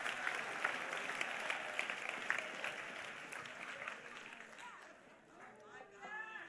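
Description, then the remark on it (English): A church audience claps steadily at a preacher's call in a dense, continuous wash of applause that thins slightly toward the end, where voices call out and cheer over the clapping. “If you're not clapping, you're the one I'm talking about.”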